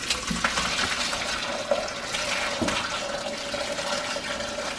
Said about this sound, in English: So here I've got a fine mesh strainer set up over my biggest kitchen bowl. And I'm just gonna carefully pour that through here to strain out the solids.